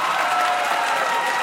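An audience of the quiz show Ask Me Another claps steadily for the runner-up, a dense, even wash of many hands with no pauses, holding a constant loudness throughout with no talking over it.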